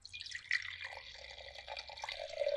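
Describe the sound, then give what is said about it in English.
Chenin Blanc wine pouring steadily into a glass, a continuous trickling splash whose pitch rises slightly as the glass fills, with no voices. “That was a cork of the road pour, man.”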